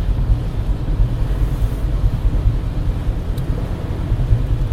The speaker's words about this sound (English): Driving home from SeaTac Airport, a blustery, rainy, shitty December day here in the Pacific Northwest.